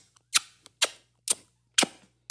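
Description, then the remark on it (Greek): A voice imitates someone at a meal noisily sucking all ten fingers one by one: four sharp, wet smacking pops in a steady rhythm about half a second apart, with faint clicks in between and no speech. “να έχει πιάσει και τα 10 δάχτυλα και ένα-ένα να τα ρουφάει, σαν να μην υπάρχει αύριο.”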